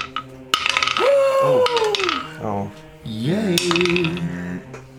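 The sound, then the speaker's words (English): Several bursts of dice clattering and rattling around in a hard dice box shared by several players rolling for initiative in a game, fairly loud, with excited voices crying out over the rolling. “Okay, we're all rolling in the same dice box, like a classy suburban.”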